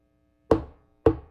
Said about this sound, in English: And he leads you to a door where he knocks in a very specific rhythm. Which shaven you... haircut 2 bits? Yes, it is shaven a haircut 2 bits.